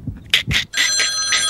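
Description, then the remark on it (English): A telephone rings with a few quick, bright bursts followed by a sustained electronic trill, loud, with no one speaking, as a random call is placed for a quiz question. “All right, let's go to the phones and see who's out there.”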